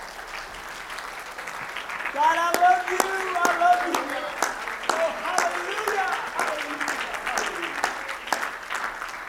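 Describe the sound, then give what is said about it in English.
A church audience claps for the Lord after a prayer, a steady, dense burst of applause lasting several seconds, with voices calling out and praising over the clapping. “And everybody said, in Jesus' name, will you clap your hands one more time unto the Lord?”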